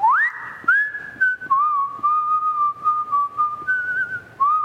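A person whistles a slow melody alone, holding long sustained notes that step between pitches, clear with soft background noise underneath.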